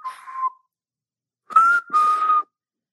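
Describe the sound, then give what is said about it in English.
A person whistles a short signal call: a brief steady tone, a pause, then two longer sustained notes in quick succession, clear, with no talking. “He had a special whistle for me when we were in like a department store, like a, I don't know, like a Marshall's or TJ Maxx or something.”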